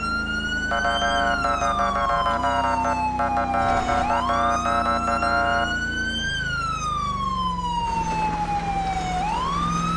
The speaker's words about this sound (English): Single siren use for low priority.